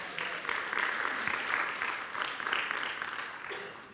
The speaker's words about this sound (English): Yeah, you can give him a great round of applause.